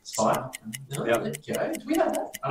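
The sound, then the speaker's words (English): A timer's clock ticks steadily and quickly, about four crisp clicks per second, running underneath people talking over it. “We'll go clock back on.”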